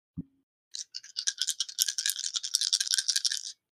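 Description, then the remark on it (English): A single dull thump, then nearly three seconds of dense, bright clattering as d6 dice from Oogie Boogie Dice are shaken and rolled for spell damage, rapid overlapping clicks growing busier before stopping abruptly. No one speaks. “So, I need d6, which we use by Oogie Boogie Dice for this.”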